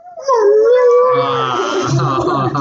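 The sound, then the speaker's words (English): A dog lets out a loud, drawn-out whine that rises into a wavering, howl-like cry, sustained for a few seconds, with no distinct barks. “But the minute it'll back up, but then it'll eventually start whining and barking. It's like, do you hear those noises?”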